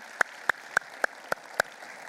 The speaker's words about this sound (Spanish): Y yo le quiero pedir, por favor, que le demos un aplauso a Dios, porque Él se lo merece.